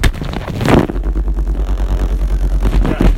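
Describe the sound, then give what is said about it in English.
A burst of crinkling plastic, then a vibrating pillow starts up: a loud, deep, steady buzz with a regular, rapid pulsing throb that continues to the end. “It's a pillow wrapped in plastic that vibrates.”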